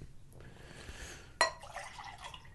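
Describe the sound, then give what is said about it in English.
Water is poured from a second pitcher into a glass, with a sharp clink of glass partway through followed by a steady splashing trickle, fairly quiet, with no talking. “Need more water. Need more water. Pitcher number two.”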